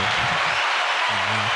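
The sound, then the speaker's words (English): A short burst of applause, a steady dense wash of clapping that fills the whole moment at a fairly loud level, with a faint low hum or voice underneath. “Let me give you a round of applause.”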